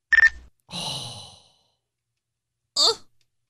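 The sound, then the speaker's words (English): A quick, bright electronic double chirp from a Nextel push-to-talk phone sounds at the start, then a long breathy sigh follows and a brief, clipped vocal sound comes near the end. “Oh, I'm thinking of the chirp. That's what I'm thinking of. Nextel chirp.”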